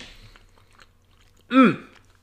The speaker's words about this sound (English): Okay. Very chewy. I guess that's the caramel. The peanuts are good, though. If you hear me chewing, I apologize. I'm trying to stay away from the microphone.